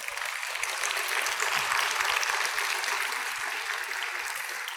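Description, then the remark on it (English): A crowd at an evening event applauds steadily for several seconds for Barry Ostrowski, the System President, and John Gantner, President and CEO of RWJ University Hospital, a dense wash of many hands clapping at an even, moderate volume with no voices standing out. “Will you do me a favor and join me in giving them a round of applause?”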